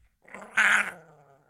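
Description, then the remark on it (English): A puppy growls, a short throaty rumble that swells into a sharp, louder snarl and then trails off into a softer, fading growl. “Hang on, missing puppy.”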